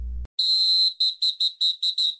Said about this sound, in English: So we're going to go ahead and kick things off here with the first quarter, like you just heard by the referee whistle.